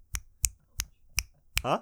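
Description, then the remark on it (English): A person snaps their fingers instead of clapping: five crisp finger snaps in a steady, slightly uneven rhythm, each a sharp bright click, with a brief burst of voice starting right after the last one. “I'm snapping right now, snapping my fingers.”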